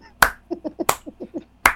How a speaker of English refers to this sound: Claps never read good on audio, but I had to.